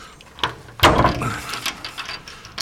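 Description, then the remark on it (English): A heavy, very old crypt door is dragged open with a grinding, creaking scrape, starting with a sharp knock and continuing in rough, uneven bursts. “Remember, these are very old doors.”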